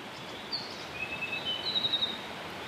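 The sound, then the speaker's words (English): A faint mohua (yellowhead) pair calling in response at survey station CH7: a few thin, high-pitched whistles and a short rapid trill drifting over a steady background hiss, with no talking. “That's them. Jackpot. Yeah. John Grant. We have a pair that has responded at CH7.”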